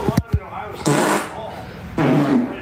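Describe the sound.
A few short sputtering pops, then two longer, raspy, buzzing fart noises, loud, that sound like a voice blowing a raspberry to imitate farting, made for a guessing game.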